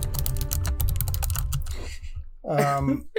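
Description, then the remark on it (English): Rapid, dense clatter of keys on a computer keyboard, loud, typed furiously for nearly two seconds before stopping; a brief voice follows at the end. “yeah, furious typing.”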